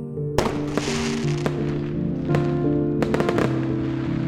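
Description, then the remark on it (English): Fireworks pop and crackle in several sharp bursts, a cluster near the end, over a steady musical drone. No one speaks. “Fireworks in the sky.”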